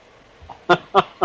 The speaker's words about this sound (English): Oh, there's that squeaky duck. I know. I'm waiting for a pay raise from my boss so I can afford a chair that doesn't squeak.